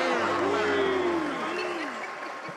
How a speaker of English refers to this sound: Now that's an adoring crowd right there.